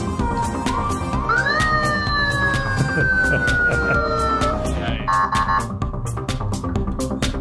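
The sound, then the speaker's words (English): A voice imitates a police siren, its pitch swooping up and then sliding slowly down in one long wail, loud over a busy, steadily pulsing background. “We need a siren.”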